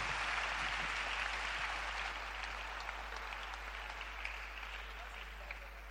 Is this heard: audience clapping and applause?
yes